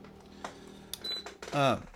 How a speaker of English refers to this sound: So I've got to get some WD-40 on the squeaky chair. You got that? Isn't that a great sound?